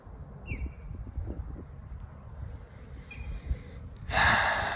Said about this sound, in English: Breathing. Another gift.